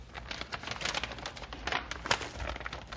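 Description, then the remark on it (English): A sealed paper packet wrapped in tape being torn open, a steady run of rough, crackling rips and crinkles lasting a few seconds with no one speaking. “Ah, tough paper and tape.”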